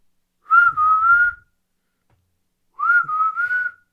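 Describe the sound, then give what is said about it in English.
Two clear whistled phrases from one person whistling into a microphone, fairly loud, each lasting about a second with a short pause between, the pitch wavering slightly like a bit of melody. No talking. “Can you hear that? Your whistle?”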